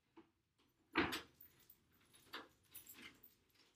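An entrance door rattles open with a sharp clack when someone comes to the door, followed by scattered lighter clinks and jangles, like keys or a handle, with no one talking.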